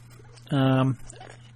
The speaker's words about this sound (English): and a sleepy dog, hey, at my feet.